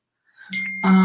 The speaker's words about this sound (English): now my phone is making all sorts of noise because I turned it up so you guys can hear Snapchat